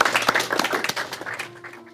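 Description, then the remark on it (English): A crowd applauds for a professor in a dense patter of many hands clapping, lively, then thins out and fades away within a couple of seconds. “Let me get a round of applause for”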